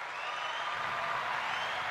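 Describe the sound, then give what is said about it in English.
A studio applause sound effect: steady, dense applause from many hands fills the whole clip, a continuous crackling wash of clapping at an even level with no voices heard. “The studio applause here.”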